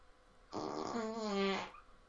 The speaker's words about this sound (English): Give me a fart, Alexa. Alexa, can you fart for us?